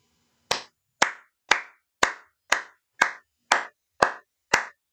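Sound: hands clapping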